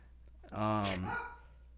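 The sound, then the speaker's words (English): A single drawn-out dog bark, somewhat muffled, from downstairs, lasting under a second against a quiet background hum. “Fucking dogs barking downstairs.”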